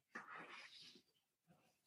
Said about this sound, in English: Oh no, and then the neighbor's dog. Hey, stop!